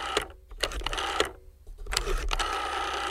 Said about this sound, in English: So you do know this sound? Yeah, it's a rotary phone.